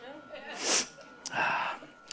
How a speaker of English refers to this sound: Sorry, I'm getting the sniffles now. That should be fun in the baptismal.